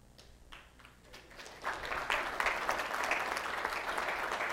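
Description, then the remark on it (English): Scattered claps from a church audience grow into steady, full applause about halfway through as more people stand, a dense crowd clapping that keeps going to the end. “Oh yeah, now people start clapping, more people start standing.”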